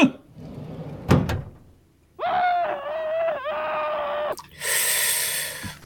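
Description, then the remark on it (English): The bottom drawer of metal filing cabinet number 4 slides shut with a long, grinding squeal and a bump, then a loud rushing rumble as it closes; an earlier knock is heard first, with no talking. “And I like the way we can make even more room by closing it.”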